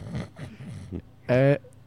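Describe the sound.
After some quiet muttering from a voice, a single short, loud, buzzy snort bursts out, a person comically imitating a snore.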